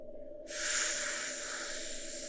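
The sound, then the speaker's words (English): A long, deep breath drawn in by a man told to breathe in deeply: a sudden, loud, airy rush that holds steady for about two seconds over a faint low hum, with no talking. “Breathe in real deep.”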